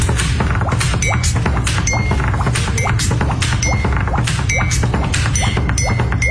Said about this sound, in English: Okay, I found this video of a guy. Yep. And he's gone viral for being a pen tapper. Like annoying people because he's tapping his pen so much? No. Like, listen to this guy play the pens on his desk.